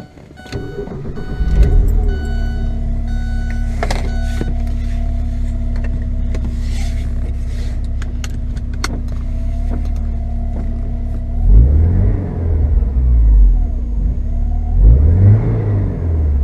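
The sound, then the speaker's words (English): A European car's engine cranks and starts, settles into a steady idle, then is revved twice near the end, rising and falling each time. No one speaks. “play number three, which happens to be your second car.”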